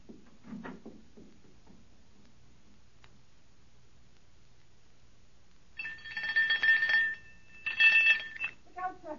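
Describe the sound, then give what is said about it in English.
A doorbell rings loudly in two bursts, a longer shrill ring and then a shorter one after a brief pause, following a quiet stretch with faint voices at the start. “Ring the doorbell. I'll hear it. Ring it loud.”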